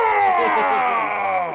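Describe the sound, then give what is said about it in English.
Vince McMahon's loud, strained grunt stretched into a groan as he takes a body slam from Shawn Michaels on Monday Night Raw, lasting over a second with a rough voice that slowly drops in pitch, no other talk. “He's got a grunt for you when he takes a body slam from Shawn Michaels and makes this noise.”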